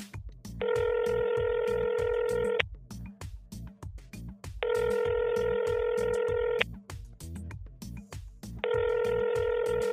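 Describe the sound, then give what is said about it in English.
A telephone call placed to reconnect a cut-off connection rings out: a steady electronic ringing tone sounds in three bursts of about two seconds each, separated by equal pauses, with no voices. “Note, immediately after the subject cut the connection during interview 3809.1, Dr. Aswari tried to reconnect communication.”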